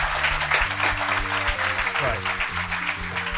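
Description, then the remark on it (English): A festival audience applauds a guest author steadily and loudly for the whole stretch, a dense, even clatter of many hands clapping, with some low sustained tones running underneath. “I think another round of applause.”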